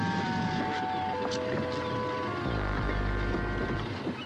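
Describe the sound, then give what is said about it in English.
A boat's engine hums steadily over wind and water noise, then its low rumble deepens partway through as the boat manoeuvres slowly, pulling alongside a little jetty. “The boat pulls alongside a little jetty, and the doctor jumps out with the mooring rope.”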